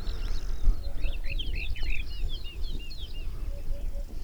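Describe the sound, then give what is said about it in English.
Hoopoes, corn buntings, a woodchat shrike and a woodlark sing together outdoors in Portugal on the Spanish border near the river Tagus: busy high chirps and trills throughout, with soft, low triple hoots repeating in the background over a light wind rumble. “And we can hear hoopoes, corn buntings, and woodchuck shrike. And a woodlark as well.”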